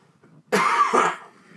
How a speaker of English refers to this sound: I forgot to mention at the top, I'm getting over a sore throat, so don't mind the coughing.